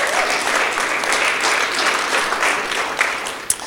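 An audience at Shofar Christian Church applauds steadily to welcome a speaker being introduced: a dense wash of many hands clapping at even loudness, with a couple of sharper individual claps standing out near the end.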